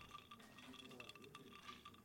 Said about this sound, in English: Negroni. We've got equal parts sweet vermouth, Campari, gin. Stir it all with ice to chill.